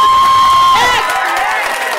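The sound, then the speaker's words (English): A loud audience bursts into cheering and applause for the performers being married. It opens with a sustained high whistle, then gives way to a dense roar of whoops, shouts and clapping that holds steady. “I want an applause for being married.”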